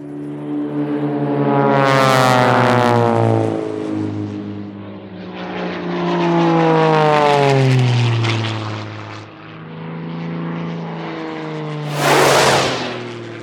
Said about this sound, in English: Wowzicles, another close call. Just missed that little prop plane.